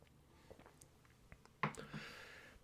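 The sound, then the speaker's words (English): A few soft mouth clicks, then a sudden slurping sip of coffee with an airy hiss that trails off over about a second, with no talking. “So here are some of the lessons I've learned right after a sip of coffee.”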